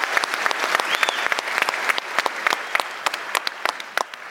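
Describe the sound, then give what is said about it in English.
An audience at an Intelligence Squared debate applauds, a dense patter of many hands clapping at steady strength, with sharper individual claps standing out toward the end. “You haven't had a round of applause, but looks like you've been working hard.”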